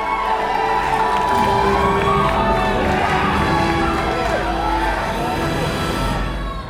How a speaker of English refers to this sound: I don't think I've ever been in a more rapturous movie theater than … and …'s Black Panther screening. People were yelling